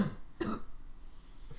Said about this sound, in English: I still have congestion, too. We're never going to be well. My cough is back. Oh, gee. It was gone for a bit.